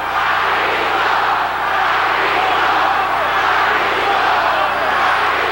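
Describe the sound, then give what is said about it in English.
A large crowd at a WWF wrestling event in New York on September 6, 1997, roars loudly and continuously, the dense mass of voices swelling in a steady, uncomplimentary chant for several seconds. “Very uncomplimentary chant.”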